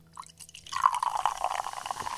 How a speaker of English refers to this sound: the one where air gets in with the carbonated part and then it gets all fizzy